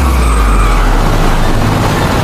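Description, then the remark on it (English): A driverless car, used as a bowling ball, rolls downhill with a steady, heavy low rumble and road noise, loud throughout the short stretch, with no voices. “And the bowling balls are these cars.”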